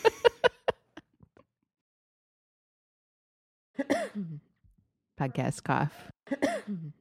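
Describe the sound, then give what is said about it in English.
A quick burst of about four short, sharp, deliberate coughs into the mic, followed by a few seconds of silence and then a person speaking. “Podcast cough.”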